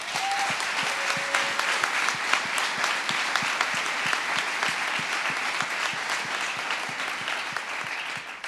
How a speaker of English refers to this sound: I'd just like to give them a round of applause, please.